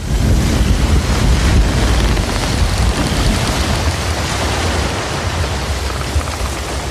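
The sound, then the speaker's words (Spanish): A roaring storm wind on the high sea buffets steadily over heavy, churning ocean waves, striking a ship head-on at the bow; a loud, continuous wash of noise with rumbling gusts and no voices. “Nos encontrábamos en alta mar cuando se levantó de pronto un viento terrible que sopló tempestuosamente, golpeando de lleno al navío por la proa.”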